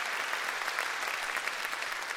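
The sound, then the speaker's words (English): An audience applauds together, giving God a hand clap of praise: a dense, steady wash of many hands clapping at an even level throughout, with no voices standing out. “Is it appropriate to give God a hand clap of praise for who he is and what he's done?”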